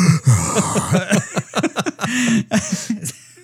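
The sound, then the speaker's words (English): A voice performs exaggerated heavy breathing on the phone, loud, with rapid raspy inhales and exhales broken by short voiced grunts and wheezes, imitating a creepy prank caller. “I just call him and do heavy breathing on the phone.”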